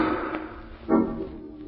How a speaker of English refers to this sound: Margot and Lamont are in the home of the wealthy actor Hugo Zara, owner of the fabulous Ruby of Karavahl, when suddenly from upstairs they hear the sound of a gunshot.